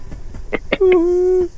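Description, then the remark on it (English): A single steady train whistle blast sounds loud for about half a second, preceded and accompanied by a few short, rhythmic chugging puffs. “He's bringing the train in.”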